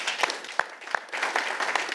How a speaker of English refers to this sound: Let's give God a clap for that. Amen.